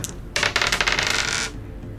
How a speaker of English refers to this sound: So roll 2 dice, add 3, and tell me the result. Looking for a high number.